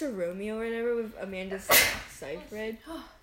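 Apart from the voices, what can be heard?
a person sneezing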